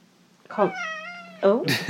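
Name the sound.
cat meowing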